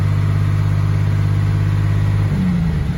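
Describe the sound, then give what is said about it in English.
A Cummins 5.9 diesel truck engine, probably a 12-valve, holds a steady, fast high idle with a dense, throaty low drone and clattering rumble, shifting pitch slightly near the end. No one speaks. “Yeah, way high idle Cummins. That's a 5.9. Yeah. Probably a 12 valve.”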